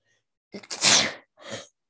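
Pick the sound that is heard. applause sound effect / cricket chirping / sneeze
sneeze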